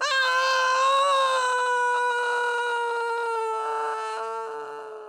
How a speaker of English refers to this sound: Then he picked up the prince and threw him off the mountain. The prince screamed and fell down.